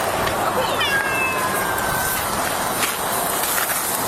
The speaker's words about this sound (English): I am missing a cat. There's definitely a cat in your car. Oh, my gosh. Is it Gus?